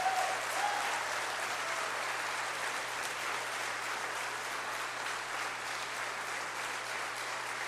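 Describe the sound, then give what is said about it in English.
Sustained applause from a large standing audience honoring a group of men, a dense steady wash of clapping that holds at an even level for several seconds without any voices standing out. “I want us to stand as they're seated, and let's stand and give them the applause that they deserve and honor them with everything that we have today.”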